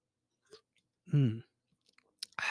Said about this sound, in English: I'm gonna get a little sip of this Red Bull.